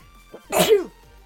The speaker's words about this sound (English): Bless you.